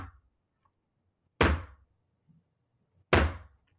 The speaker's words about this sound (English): And he takes his hand and he hits the table like this.